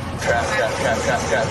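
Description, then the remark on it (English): A truck engine rumbles steadily as the truck accelerates onto the interstate, with broad road noise of surrounding traffic and faint, muffled voices mixed underneath. “I cannot believe I'm getting on the interstate. Accelerate.”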